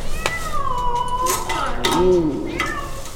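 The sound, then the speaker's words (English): An unhappy, accidentally trapped cat yowls in long, drawn-out wavering cries, loud, with a few sharp clanks of metal in between, as it is released from a trap set by researchers studying nocturnal animals. “They will also release accidentally trapped skunks, a mink, and one very unhappy cat.”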